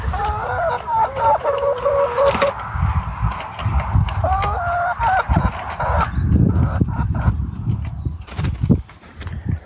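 Several hens cluck and warble in a chicken coop in the morning for the first six seconds, over steady crunching footsteps of someone walking over to them that continue alone toward the end. No one speaks.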